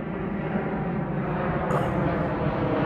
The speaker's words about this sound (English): He's trying to trademark the sound of an airplane.